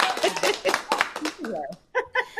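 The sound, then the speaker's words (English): A short clapping sound effect: a burst of dense applause, many hands clapping fast for about a second, then fading as a few high voices cheer and laugh. “See, that clapping, that applause actually comes from all the baby bunnies who weren't harmed in animal testing by sustainable companies.”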